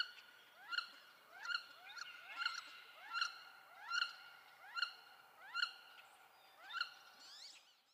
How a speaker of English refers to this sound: Wood Duck